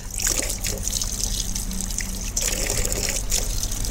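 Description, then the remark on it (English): A dog slurps water from a drinking fountain in a recreation area, well clear of the nozzle: a steady trickle of running water with a few bursts of wet, hissy lapping over a low background hum, with no talking. “And this is what it sounds like when a dog enjoys a slurp from a fountain, well clear of the nozzle, I have to say.”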